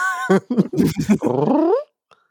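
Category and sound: animal, dog growling and whimpering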